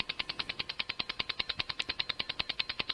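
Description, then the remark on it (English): A 30-second timer sound effect played from a Rodecaster: a fast, steady ticking of sharp, bright clicks, roughly eight per second, with no voices. “That's called 30-second timer.”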